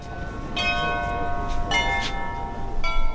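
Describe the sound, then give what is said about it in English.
The bells of St. Michael's Cathedral in Ukraine ring out in overlapping peals on a day of commemoration events, their bright strikes and long shimmering hum layering together over a low outdoor rumble, loud, with no voices. “Those are the bells of St. Michael's Cathedral”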